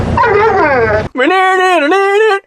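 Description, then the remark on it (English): A dog makes a drawn-out, singsong howl that mimics the phrase "I love you," in two long wavering phrases with a brief break between them, loud; a sample from a Little Caesars commercial, looped into a hip-hop track. “The sample of the dog saying I love you into that looped sample is one of my all-time favorite, like, 5 seconds in hip-hop.”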